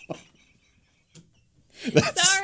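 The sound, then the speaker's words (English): A voice imitates a wet vacuum suction slurp: one rising burst of hissy, gurgling noise that bends into a warbling voiced tone, after a second of near-silence with faint mouth clicks. “That slurp sound just was not.”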